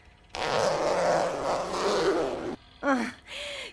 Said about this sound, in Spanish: No se te ocurra mirar. Y bájame la cremallera.